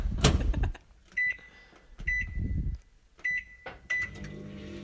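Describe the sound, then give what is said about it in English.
A microwave oven set on high to cook an uncovered egg in water for one minute: a solid thump, then several short high-pitched keypad beeps separated by dull clunks, ending with a low steady hum as it starts running. No one speaks. “Suggesting 1 minute of cooking.”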